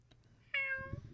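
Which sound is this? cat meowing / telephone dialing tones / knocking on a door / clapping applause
cat meowing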